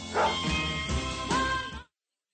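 A dog barks two or three times in quick succession, loud and close, with no voices around it, and the sound cuts off abruptly after the last bark.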